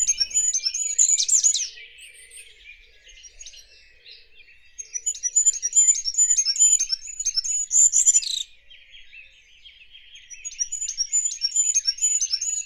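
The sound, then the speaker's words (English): A goldcrest, the smallest bird in the United Kingdom and in Europe, sings a very high, thin song repeated in short rhythmic phrases, three bursts separated by brief pauses, clear with a faint background of other twittering. “Every churchyard seems to have a goldcrest in it. This is the smallest bird in the United Kingdom, smallest bird in Europe.”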